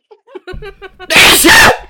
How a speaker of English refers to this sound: Oh shit, I gotta sneeze.